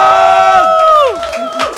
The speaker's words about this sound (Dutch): Hij zag, kwam en overwon. Mag een dik applaus voor …!